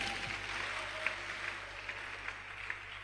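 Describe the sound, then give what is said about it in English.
Hands clapping for the Lord at a fairly soft level, a dense wash of claps with a few sharper ones standing out at a steady, roughly even pace. No one speaks. “Somebody clap for the Lord.”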